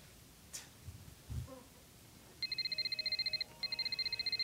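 An outgoing phone call to a friend rings in the earpiece: two bursts of a fast, warbling electronic ring tone, steady and moderately loud, separated by a brief pause, after a few faint clicks and bumps.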